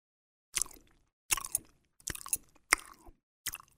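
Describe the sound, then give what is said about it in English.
A voice imitates loud, sloppy gum chewing, with five wet, smacking bursts in an uneven rhythm separated by brief silences. “Homie was chewing that gum a little too wild, wasn't he?”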